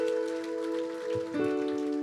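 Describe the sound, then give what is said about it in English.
A crowd gives the Lord a round of applause, clapping steadily in a dense, crackling wash, while sustained organ-like chords hold underneath and shift to a new chord partway through. “Why don't we give the Lord a round of applause?”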